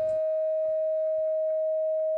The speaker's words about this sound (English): Whoever's putting the fucking sine wave in here, I have to stop. That was useful. That was my audio capture, like generating a feedback loop. That was crazy.